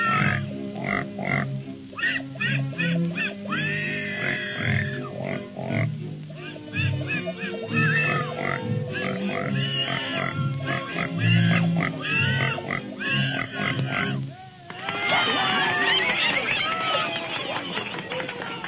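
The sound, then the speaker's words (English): Pigs grunt and oink in a loud, steady rhythm that sounds almost musical, then break into a denser burst of higher, squealing calls near the end. “Presenting Mr. and Mrs. Patty Pig.”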